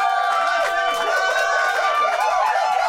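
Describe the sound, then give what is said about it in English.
A small group in a control room applauds steadily for a few seconds after a live song performance, mixed with cheering voices and excited murmuring, continuous at an even level throughout. “Control room, round of applause, please.”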